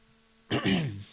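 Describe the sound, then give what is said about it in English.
A single loud throat clearing, a short raspy burst with a voiced, gravelly tail lasting about half a second after a quiet lead-in. “Clear my throat there.”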